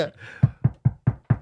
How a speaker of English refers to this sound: Okay. I'm going to knock on the door then.